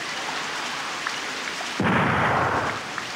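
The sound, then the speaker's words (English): Steady hiss of rain, then a sudden loud gunfire boom that rumbles for about a second as a stand-in for thunder before fading back into the rain. No voices. “There's no thunder, so he used gunfire.”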